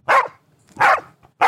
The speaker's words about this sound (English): I'm glad we got that one in. Yeah, the dog agrees.